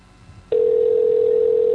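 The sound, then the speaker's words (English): A steady, fairly loud telephone tone switches on abruptly after a quiet moment and holds a single unbroken pitch, like the ringing signal heard while an outgoing call waits to connect. “Yeah, it is, because we're calling somebody on the phone.”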